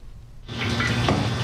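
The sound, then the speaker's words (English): After a brief quiet moment, a tap is turned on and water gushes steadily, with faint splashing as a duck is washed beneath the stream before being stuffed for roasting. “A washed duck is stuffed, sewn up, and blanched in boiling water, then covered with vinegar to ensure its skin gets nice and crispy.”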